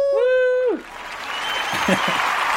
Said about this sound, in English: Woo! I think they were claps. Is that what it was? Yeah. Sweet.